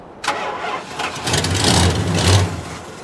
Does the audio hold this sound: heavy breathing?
no